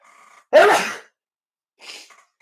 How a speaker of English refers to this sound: What I did last night and completed this morning was, sorry, trying to fight off a sneeze, is I thought about what I'm thankful for.